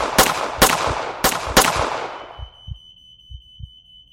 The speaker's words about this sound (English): as a volley of 9mm shots ripped through the door.